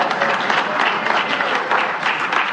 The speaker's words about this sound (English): And it's almost embarrassing that we applaud that, right? Like, think how elementary that is.